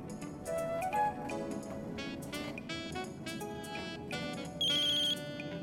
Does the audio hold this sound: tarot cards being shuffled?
no